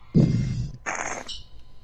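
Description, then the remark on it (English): A dog gives two barks in quick succession, the first deep and booming, the second sharper and higher, both loud with no talking over them. “I thought the dog barked again.”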